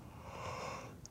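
A single quiet yawn, a breathy, drawn-out rush of air lasting about a second with no talking, ending in a soft click.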